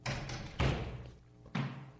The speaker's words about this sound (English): Who's that knocking at the door?